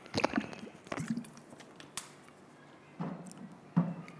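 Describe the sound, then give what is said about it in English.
Someone quietly sips water, with a few soft, wet gulps and mouth sounds spaced irregularly over a few seconds; no one speaks. “I just want to have a drop of water and then can we pray?”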